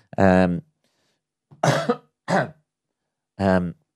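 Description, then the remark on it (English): A few short coughs, a pair of harsh bursts in the middle, bracketed by brief voiced throaty grunts, with silent gaps between each sound. “yeah, so sorry about the little cough there.”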